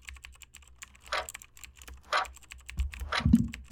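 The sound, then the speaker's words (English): Rapid, continuous clacking of keys on a computer keyboard as someone types the alphabet in a timed speed test, fast irregular keystrokes, with a few heavier bursts and a low thump near the end. “So, so we're going to give you 3 tries each, whatever keyboard of your choice, and we'll see what kind of times you put up.”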